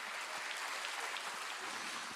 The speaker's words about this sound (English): Come on, once again, let's give God a good clap offering. Amen.